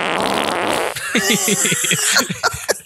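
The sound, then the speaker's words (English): A loud, sputtering fart sound effect from a soundboard: a brief hissy burst, then a rapid flapping, bubbly series of pulses trailing off into a few wet pops. No one speaks over it. “Absolutely love the soundboard, Matt, especially the fart one.”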